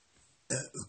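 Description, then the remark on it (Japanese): After a moment of near silence, a loud burp erupts in two quick rumbling pulses, then cuts off. “ごめん、ゲップした。”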